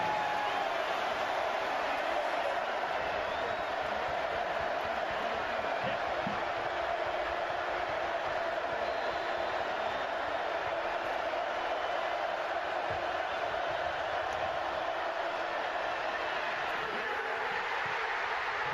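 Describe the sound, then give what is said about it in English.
A stadium crowd roars after a football stop that wins the game and sends the team to the national championship against Washington, a dense, steady wall of cheering noise that holds at full strength for the whole stretch without fading. “But the crowd reaction and just the scene, not to mention the uniform matchup here, so sexy.”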